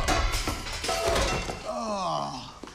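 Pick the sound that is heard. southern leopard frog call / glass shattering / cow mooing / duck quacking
glass shattering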